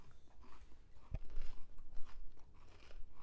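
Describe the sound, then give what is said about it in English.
A single sharp, crunchy bite into a thick-cut dill pickle, followed by a few seconds of soft, wet chewing with no talking. “It's dillier. It's just as crunchy.”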